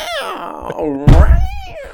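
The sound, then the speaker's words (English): A man mimics a cat with a drawn-out, wavering yowl that slides up and down in pitch, broken by a sudden loud thump about halfway through. “This guy instigates cat fights just so he can do his little kitty impression.”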